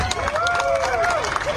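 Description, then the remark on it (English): A few scattered, uneven hand claps from a small handful of people among a crowd of over 200, steady at moderate loudness, with a sustained tonal voice or cheer running underneath and some background murmur. “So of the 200 plus people there, it sounded like four were applauding.”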